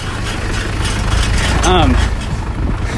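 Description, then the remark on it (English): Steady, loud street traffic with cars and trucks rumbling past as people run alongside them, a continuous low roar and wash of engine noise, with a brief voice rising over it midway. “Keeping up with traffic. Yeah, we're actually running with the cars.”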